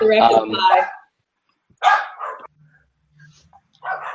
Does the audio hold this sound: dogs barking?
yes